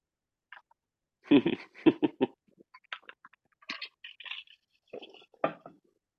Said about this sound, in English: It's fine. I'm trying to chew them as quiet as possible.